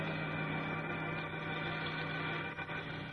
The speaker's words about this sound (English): Eyes wide and heart pounding, young Chuck Riggs watches the truck carrying his uncle and the other hooded terrorists roar out of the dark driveway.